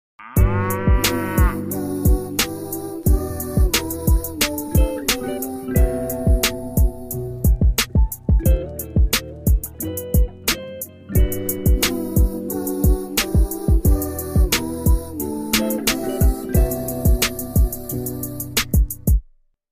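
A novelty rap beat with steady punchy drums and bass, overlaid with drawn-out cow moos that open the track and recur throughout, loud and upfront.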